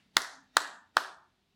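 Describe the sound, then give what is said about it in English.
Three sharp hand claps in a steady, even rhythm, each crisp and bright with a short decaying tail, with no voices present. “because she memorized the prayer that I taught and she's repeating it back to me and I am clapping.”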